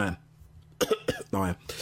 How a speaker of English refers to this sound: Excuse me. That wasn't a bullshit cough. I'm a patron. No, it was a genuine cough.